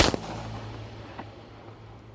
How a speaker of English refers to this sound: There was a gunshot, and then blackness.